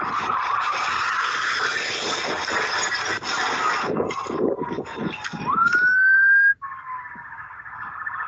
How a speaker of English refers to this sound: We have surveillance video, and it shows a stolen car rolling, and it slides across the road after a crash with Michigan State Police.